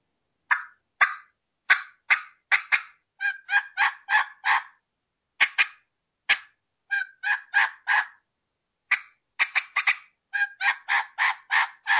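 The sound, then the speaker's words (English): A turkey call is used for cutting and yelping: sharp, rapid clucks fire off in irregular bursts, then settle into runs of evenly paced yelps, loud for about twelve seconds with no talking. “You can cut like this and yelp and get a great response from a turkey.”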